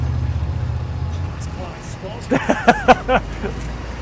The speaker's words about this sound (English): Bloody buses spoiling the view.